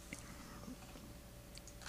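Soft, wet chewing close to the microphone, with small irregular clicks and smacks of food being worked between the teeth over a quiet, steady background hum.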